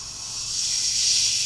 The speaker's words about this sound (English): So you want, here's the cold water. Get ready. I'm filling up the bucket.